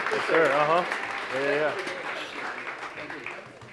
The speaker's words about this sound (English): Give our veteran one more big round of applause, please.